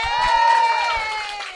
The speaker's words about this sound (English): So give yourselves a round of applause for staying with the show tonight. Thank you very much for supporting the comedy. And next of all, give us a round of applause for our guest tonight,